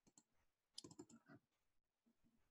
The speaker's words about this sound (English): All right, so I am going to spin some extra dice here.